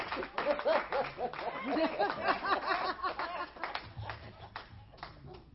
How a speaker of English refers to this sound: Why don't we give the Lord one more hand clap of praise? God has been so good.